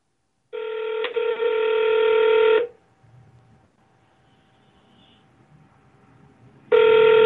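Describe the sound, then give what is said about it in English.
A phone line ringing through the earpiece during a call to a Google Voice number: a loud, steady buzzing ring tone lasting about two seconds, a long pause of near silence, then the next ring starting. No one speaks. “I'm calling it right now.”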